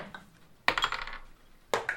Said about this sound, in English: He rolled a 19 on the dice, which means he got a 24.